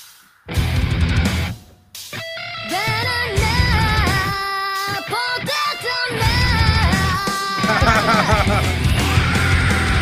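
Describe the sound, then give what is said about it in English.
A loud, drawn-out scream with a wavering, strained pitch, held for several seconds in repeated bursts over a dense, rumbling background. “There's that scream.”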